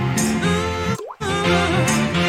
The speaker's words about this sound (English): Splash.